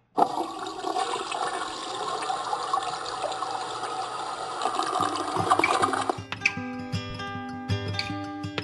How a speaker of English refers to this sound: I flushed that sucker goodbye.